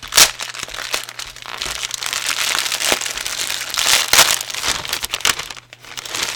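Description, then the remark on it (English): A plastic Honey Stinger snack bag crinkles and rustles steadily for several seconds, with sharper crackling bursts as it is pulled open and handled. No one speaks. “There's two bags of Honey Stinger stuff in here, and it's sold as a set.”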